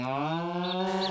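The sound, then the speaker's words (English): A single cow moos in a long, steady, low drawn-out call that fills the whole moment, loud, with no talking over it. “Several cows died in the making of this advert.”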